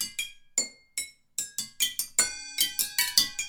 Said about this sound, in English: And I think before we even put drums on it, we had this idea where we wanted this wacky percussion part. What we did is we just took a bunch of bottles of liquor, put them on the dining room table, and played improvised rhythms with chopsticks.